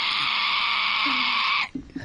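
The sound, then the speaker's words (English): A pig lets out one long, piercing squeal, loud, holding a shrill tone for over a second before cutting off into a few brief, quieter sounds. “Yeah, that pig sounded like it was getting slaughtered.”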